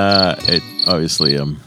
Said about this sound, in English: That's crickets, I hear.